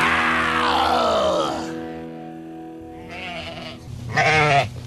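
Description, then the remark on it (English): Sheep bleating: one long, wavering bleat that slides downward, then after a pause two shorter, rougher bleats, the last one loudest. No talking. “Quiet, girls. I think the shepherd's coming.”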